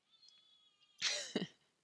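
A cat lets out one loud, drawn-out meow right by the microphone, breaking a near-silent moment; the cry swells sharply near its end and stops, with no one talking.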